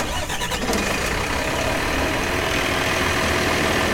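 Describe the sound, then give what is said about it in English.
A large bus engine turns over and revs up, then settles into a steady rumbling drone as the bus driver drives off, loud throughout with no talking. “She got off the bus and walked to the back and then the bus driver drove off before she got there.”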